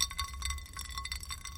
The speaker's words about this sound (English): I really like the sound of ice cubes in a glass. I don't know why, but I do.